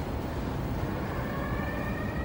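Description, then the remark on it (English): A distant emergency siren wails faintly over a steady rumble of road noise while driving on a highway, its thin rising tone emerging partway through and holding steady, with no one speaking. “They drive in silence for about 3 seconds before we hear a siren going off in the distance.”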